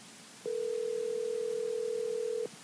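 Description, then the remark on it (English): A telephone call ringing as a call is placed to Mark Zona: one steady, buzzing ring tone lasting about two seconds, then silence, clear and alone with no voices. “But ladies and gentlemen, we're going to see if we can get him on the phone right now.”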